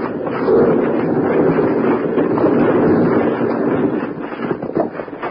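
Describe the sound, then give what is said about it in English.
A continuous, heavy rumbling roar of a landslide crashing down in Boulder Canyon, huge rocks smashing all around, dense low crashing sustained for several seconds at high volume, with no voices, easing slightly toward the end. “Wild Bill, Jingles, and Grandpa Granger, deep in the bottom of Boulder Canyon, suddenly look up to see a landslide crashing down on them. As they start to run, huge rocks smash all around them.”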